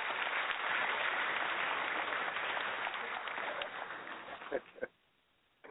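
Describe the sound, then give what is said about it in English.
A crowd at an Our Own Voices Live gathering in 2015 claps steadily for several seconds, a dense crackling wash of many hands that fades slightly before a few final claps and a sudden stop. “Give yourselves a big hand of applause.”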